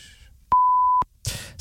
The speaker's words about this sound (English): Oh, the blaggers alarm.